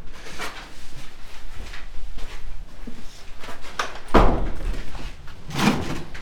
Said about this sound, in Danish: Du kan lukke døren op derovre, så jeg kan se.